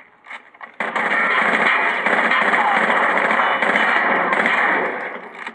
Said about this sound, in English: Those are the sounds of Rainbow Six Vegas, a war-based video game for Microsoft's Xbox 360.